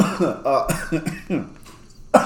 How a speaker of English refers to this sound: He's got the cough this week. Somebody always has it.